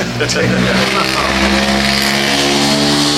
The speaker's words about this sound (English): Yeah, can you hear that? That's a truck. That's an old Chevy that truck. Nice glass pack. Glass pack. Remember those?